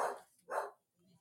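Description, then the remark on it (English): A dog outside the house at night barks twice in quick succession, two short, fairly muffled woofs with a brief pause between them, followed by faint low background noise. “Maybe he's barking at something else.”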